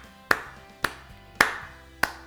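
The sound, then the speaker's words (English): Four sharp, evenly spaced hand claps at a slow, deliberate pace, each a crisp bright smack with a short ring after it, with no voices in between. “Slow clap into the...”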